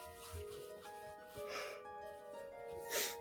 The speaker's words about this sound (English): Sorry, I don't know why I can't stop yawning, you guys. Okay. You really should stop yawning.